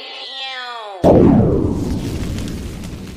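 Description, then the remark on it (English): A falling, whistling tone lasts about a second before a sudden loud bomb-blast sound effect, called "the bomb" on the BM Beauty Show, erupts, its broad roar slowly fading into a long rumbling tail. “I got a little thing around here. We call it the bomb.”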